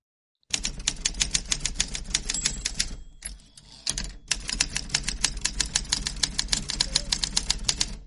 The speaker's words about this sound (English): And so hit the typewriter and let's move on.